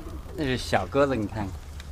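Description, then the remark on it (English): Pigeons coo in a small cage on the tin roof of a brick home in China, in a few short, rolling calls that rise and fall over a couple of seconds, with a steady low hum underneath. “Then he opens the door to a small cage, crouches low, and begins shooing out his birds.”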